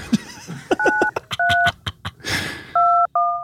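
Telephone keypad dialing tones: four steady two-tone beeps in an uneven sequence, the last two close together, with sharp clicks and taps scattered between them and no one talking.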